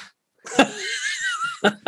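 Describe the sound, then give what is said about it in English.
Sharp hand slaps, made by someone hitting their own hand, land like punches: one crack, then two quick smacks near the end, with a drawn-out, strained vocal sound like a laugh stretching between them. “That's me hitting my hand in annoyance.”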